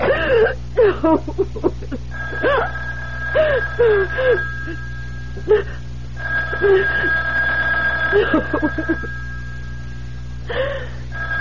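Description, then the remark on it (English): A telephone rings with a steady, high electronic tone that persists for several seconds, mixed with a person's shaky gasps and whimpering breaths. “Don't ever hang up on me again. I'll keep calling back.”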